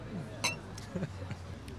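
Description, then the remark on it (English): Glasses clink together in a toast: one bright, ringing clink, followed by a couple of fainter taps, with low murmuring voices in the background. “Cheers first. Cheers.”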